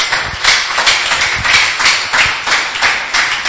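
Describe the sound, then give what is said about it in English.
A church audience claps for Jesus in steady, dense applause, a continuous loud wash of overlapping hand claps with faint periodic swells, and no one speaking over it. “Is it okay to clap for Jesus?”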